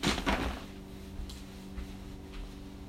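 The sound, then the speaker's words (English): A chair creaks and squeaks, starting with a quick rustling shift and then a steady, thin squeal that drags on quietly. No one speaks. “This dang chair is squeaky.”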